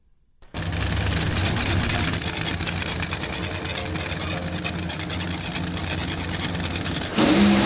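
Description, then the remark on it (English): A powerful drag racing car engine at the starting line at Wild Horse Pass Motorsports Park bursts in abruptly and roars loudly and steadily, a harsh, rumbling drone that holds for several seconds before swelling slightly louder at the end. “Todd's car fails at the starting line, and Matt Hagen trucks down to the top end, 3.890 seconds, 325 miles per hour.”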